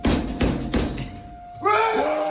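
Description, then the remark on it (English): A bear bangs on a window: three heavy, dull thuds in quick, uneven succession, followed by a loud raised voice with a wavering pitch. “That's the bear banging on the window. Yes, that is apparently the bear.”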